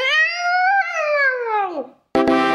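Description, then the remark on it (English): A child's voice imitates an elephant's trumpet: one long, loud, high-pitched wail that holds steady, then slides down and trails off. After a short silence, a second loud voiced burst begins. “This is my impression of an elephant.”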